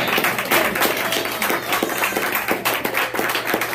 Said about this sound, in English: Thank you, Lord, another hand clap of praise for that.